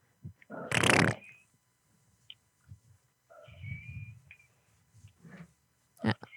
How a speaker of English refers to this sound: So what's the whistling noise? That's me. Just me whistling.